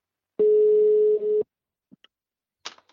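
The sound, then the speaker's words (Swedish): A single steady telephone ringback tone sounds for about a second on a call placed to Tor-Arne Fredheim, followed by a couple of faint clicks and a brief rustle as the line connects. “Vi tar väl och ringer till honom så får vi höra hur han sammanfattar de här 26 matcherna som Norrköping har spelat.”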